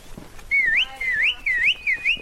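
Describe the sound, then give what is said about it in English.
A person whistles loudly in a series of shrill, wavering notes that swoop up and down, with short breaks between phrases and no talking, as a three-man team of wranglers nudges a baboon troop out of a village and into a grove of pine trees. “By clapping, shouting, and whistling, this three-man team begins to nudge the troop out of the village and into a grove of pine trees.”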